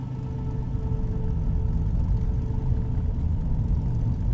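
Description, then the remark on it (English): A truck's engine drones steadily from inside the cab as it drives along dark, unlit back roads, a continuous low rumble with a faint hum on top and no voices. “We get into the truck and drive into the darkness of unlit back roads.”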